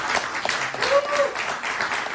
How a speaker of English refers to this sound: I wonder, is there anyone here today who knows the resurrection changed their life? If so, can you give a shout or a hand clap of praise today? Can you testify today?